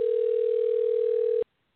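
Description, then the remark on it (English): A steady, single-pitched telephone dial tone, as a radio show tries to call a guest from the Heritage Foundation, hums loudly and evenly for about a second and a half, then cuts off abruptly into silence. No one speaks. “So hopefully he got the message and he knows to pick up the phone.”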